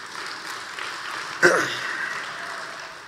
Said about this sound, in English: I never thought I would get an applause for a cold and flu killing people for thousands of years, but you never know.